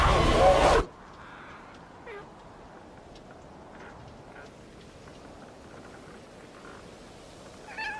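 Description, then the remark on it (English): A short loud burst of noise gives way to a few faint, scattered cat meows over a quiet, hissy background, with a slightly louder meow at the very end. “I came to say sorry, no, and bring you this kitty. Oh, empty, he is so sweet, look at this new kitty thing.”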